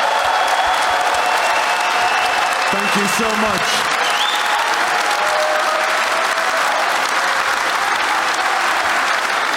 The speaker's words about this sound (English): For now, though, can we please give Mr. Ian Wright another round of applause?